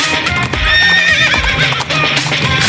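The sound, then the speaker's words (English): A loud horse whinny with wavering pitch rises over steady clip-clopping hooves, the neighing stretching across most of the short stretch. “I don't even know if that's a horse at the end of that. I think it might be a camel, but that even makes it even more enjoyable, if you ask me.”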